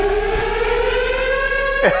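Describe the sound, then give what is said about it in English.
An air raid siren sound effect wails with a steady, sustained tone and strong harmonics, holding its pitch before a brief dip and swoop near the end. No one speaks. “It's an air raid.”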